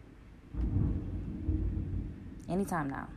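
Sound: thunder rumbling outside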